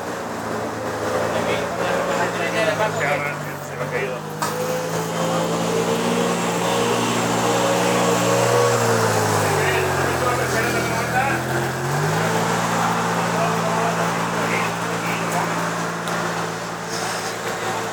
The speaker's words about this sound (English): There's a couple of dockside builders' vehicles driving towards me, so I'll just be quiet for a moment.